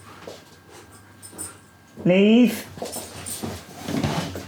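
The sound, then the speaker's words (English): An excited female dog having nighttime zoomies, doing a bunny hop with her legs, lets out a loud, wavering whine for about half a second, with scuffling, snuffly noises around it and a person speaking briefly. “Got the nighttime zoomies. She's doing the weird bunny hop thing with her legs. Any dog owner will know what I'm talking about.”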